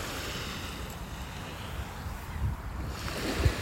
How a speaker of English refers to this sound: When I sit on this sand, I feel so grounded and so still. And yet the movement of the water is always present. And they're not fighting with each other. They're harmonized, like just completely harmonized.